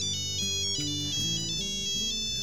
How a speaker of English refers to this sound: And the cell phone rings.